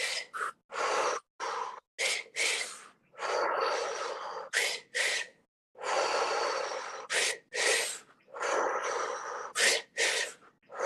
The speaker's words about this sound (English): Double inhales, single exhale. Just a double sip of air and oxygen.